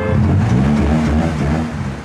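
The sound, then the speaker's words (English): A car engine revs loudly in Bebop's car park in Ireland, where young drivers gather, a steady low rumble with its pitch rising and falling slightly over about two seconds, with no voices. “And we've arrived back again to Bebop's car park.”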